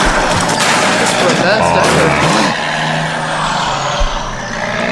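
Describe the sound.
A large truck rumbles loudly, its engine droning with a brief hiss like an air brake before it pulls away, the noise thinning as it drives off. A voice murmurs underneath.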